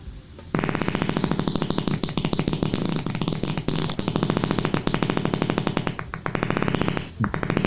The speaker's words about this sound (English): Here's a fart from a video he titled, Oh My God.